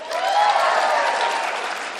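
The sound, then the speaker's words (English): Sustained audience applause at LCU, a dense, steady wash of many hands clapping at a fairly loud, even level throughout, with no voices standing out. “If you're visiting, we clap at everything at LCU.”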